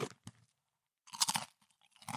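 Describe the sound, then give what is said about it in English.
Crisp, dry crunching of potato crisps: a couple of short crackles, a pause, then a dense burst of loud crunches and a few more at the end, with no voices. “It turns out that being able to predict the descent of a space probe is similar to understanding how potato crisps can be put into bags without breaking.”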